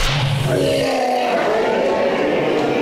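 A sumo wrestler's slap directly on a man's bare stomach, played back in slow motion, stretched into a loud, drawn-out smack that smears into a low, groaning, wobbly tone for a few seconds.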